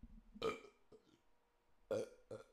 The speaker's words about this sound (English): Hold on, I got a burp.